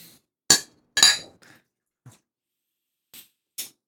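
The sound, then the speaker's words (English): Glasses of a cloudy amber local beer from Cincinnati, Ohio clink together in a toast: two bright, ringing knocks about half a second apart, then a few lighter taps and clicks fading out, with no voices. “You know, cheers.”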